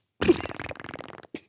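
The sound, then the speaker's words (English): A loud mouth fart: someone blows a wet, flapping raspberry for about a second, then adds a short final sputter after a brief pause. “It's a fart noise.”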